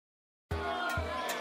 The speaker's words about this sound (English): Oh, they're booing.